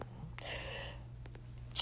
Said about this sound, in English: You know, I know that, you know, that's just, you know, that's just a common thing. On occasion, you may sneeze. So what?